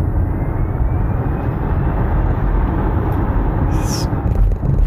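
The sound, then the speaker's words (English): A steady, fairly loud low rumble fills the cabin as an electric car accelerates from 0 to 55 miles per hour in a matter of seconds, with road and motor noise building smoothly and no voices. “Right there, I mean, that's 0 to 55 in a matter of seconds.”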